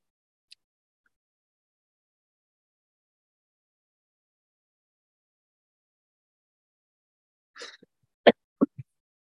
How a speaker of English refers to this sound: Bless you. Thank you. That was a cough, but yeah, okay.